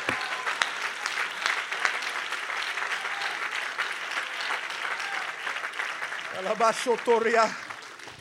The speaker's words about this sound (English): Come on, somebody, if you believe that, I wonder if you clap your hands and give God praise.